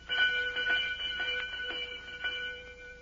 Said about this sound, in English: What you talking about? Sure I rings the bell.